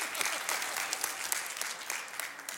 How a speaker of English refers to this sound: But anyway, that's the first time anyone's ever clapped for me at Good Shepherd.